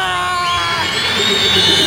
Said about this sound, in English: It was a particularly high scream, the kind that seems to only affect sensitive adult men.